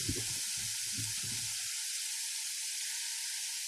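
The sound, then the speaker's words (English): Steady, bright sizzling of food frying in a hot pan, a dense crackling hiss that holds throughout, with a few low rhythmic thumps at the start before it continues alone. “Sizzling hot takes are brought to you by Dirt Burgers.”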